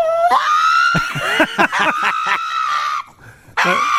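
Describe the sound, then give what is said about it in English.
A pug screams loudly and continuously in high, piercing wails with choppy breaks while its toenails are being clipped, pausing briefly before starting up again. “He's gorgeous, but yeah, he screams like a mad thing.”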